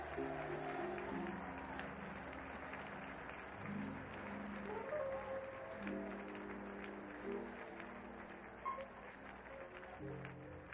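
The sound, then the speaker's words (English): An audience at a church revival gathering claps steadily, a dense, continuous patter of many hands that lasts the whole stretch, with sustained tones or voices humming along underneath. “Clap your hands if you want to carry revival back to your church.”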